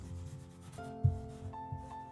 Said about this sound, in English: Now I want you to write down a secret word on the paper, but don't show it to anyone,